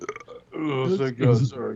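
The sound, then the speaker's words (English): A voice imitates a quiet, stifled burp: a short croaking sound rising into two low, throaty swells over under two seconds, with no clear words. “He's like burping quietly.”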